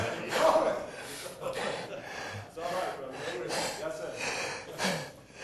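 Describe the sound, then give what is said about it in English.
A voice imitates the biblical Caleb snoring in the camp with a series of raspy, snorting breaths repeated in an uneven rhythm, moderately loud, with no other sound around it. “And every time they'd take a breath to cry again, they heard somebody snoring.”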